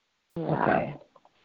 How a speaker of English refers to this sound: Yawning away.